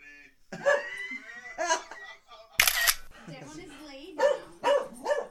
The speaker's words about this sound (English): Hey, goddamn dog. You dogs, be quiet.